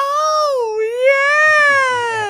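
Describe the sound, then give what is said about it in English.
A voice imitates the shriek of the Undertaker's blonde-haired wrestling manager, a loud, high-pitched wail lasting about two seconds that dips briefly in pitch, then climbs and holds steady with a slight waver. “just imagine the moment of when Undertaker comes back and all you hear sees the lights go off and all you hear is him out the blue shriek.”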